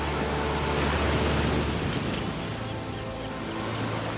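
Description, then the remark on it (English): A steady, broad roar of surf washing onto a huge expanse of beach with pebbles and sand, loud and continuous throughout, with a low rumble underneath at the start and no voices. “I'm sure just around this corner, we're going to have the grand reveal of the sea.”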